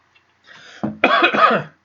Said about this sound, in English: Guys, sorry, I keep clearing my throat. I'm sick as a dog right now.